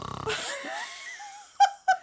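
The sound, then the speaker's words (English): Two voices mimic snoring: a rattling snort followed by a long whistling, wheezy exhale, then two short sharp snorts. Fairly loud, with no talking. “Mutual snore-law there.”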